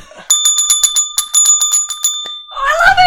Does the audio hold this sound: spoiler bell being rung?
yes